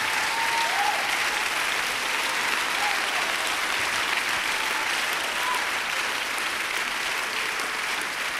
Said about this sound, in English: See, the reason why people are standing and clapping right now is because they can empathize with somebody that has realized there's nothing in this life that can help me, save me, deliver me, heal me, other than the power of the Holy Ghost.